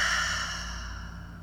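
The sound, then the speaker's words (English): A single long, audible exhale pushed out through the mouth, breathy, starting strong and gradually fading over about a second and a half, with no talking. “Big exhale out through the mouth.”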